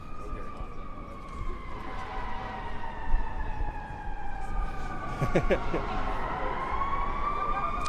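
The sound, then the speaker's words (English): A fire truck siren wails steadily over street noise, its long sweeping tones sliding downward as it passes, with a brief burst of horn-like blasts partway through and faint voices underneath. “With these fire trucks stop going by.”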